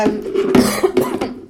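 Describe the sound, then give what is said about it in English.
A few short, rough coughs in quick succession, fairly loud, with a hoarse voiced quality between the bursts and no speech. “I'll just cough all over it.”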